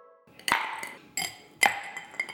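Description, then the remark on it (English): Three bright glass clinks ring out at a steady pace, each with a sharp, high-pitched attack and a short shimmering decay, as a Bloody cocktail is poured. No one speaks. “Well, let's, without any further ado, I think we should pour ourselves a Bloody.”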